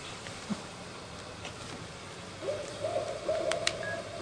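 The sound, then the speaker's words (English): Barred owls, fairly large owls, hoot to each other in the evening in a series of wavering, rising calls that start about halfway through, over a steady outdoor background hiss, with no voices. Recorded at a cabin in northern Michigan, near Sheboygan; probably four or five owls are calling. “These are called barred owls. They're a beautiful, fairly large owl that sings to each other in the evening.”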